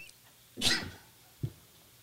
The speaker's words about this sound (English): Quiet the dog, please.